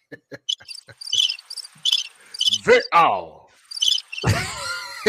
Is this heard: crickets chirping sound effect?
yes